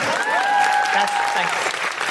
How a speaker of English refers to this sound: Feel free to applaud or don't. Or don't.